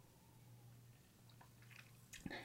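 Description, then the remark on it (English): A quick sip of champagne: a few small wet mouth and swallowing sounds near the end, over a faint steady low hum, with no one talking. “Okay, so the good news that I'm very excited to share, that, if you excuse me a second, I need to take a sip of my champagne.”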